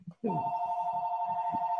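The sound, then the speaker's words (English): A telephone whose number is not public rings with a loud, steady electronic tone that starts abruptly after a brief pause and holds without a break, with faint low murmuring beneath it. “That number's not even out in the public. It's always ringing.”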